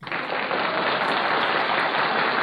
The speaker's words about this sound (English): Yeah. That was, you're supposed to cue the clapping right then.